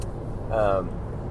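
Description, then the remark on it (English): Steady low road and engine rumble from inside a moving car on a Saturday night fills the short stretch, with a brief voiced sound rising over it midway before the drone continues alone. “You are riding shotgun with me in my car.”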